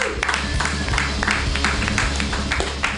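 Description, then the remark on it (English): An audience applauds a performer after his set, clapping steadily for the full three seconds, a dense, even wash of many hands clapping at once with no voices rising above it. “All right, keep it clapping for Calvin Albright.”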